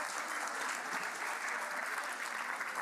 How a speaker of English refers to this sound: Well done, everybody. Big round of applause.